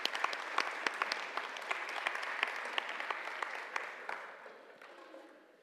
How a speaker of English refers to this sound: Right, round of applause for our helpers there.